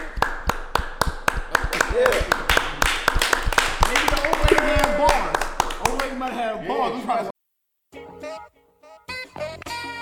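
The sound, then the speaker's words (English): Sharp hand claps ring out in a quick, steady rhythm for about six seconds while voices talk and shout over them, then a brief silence before voices and music resume. “Mother, clap it up.”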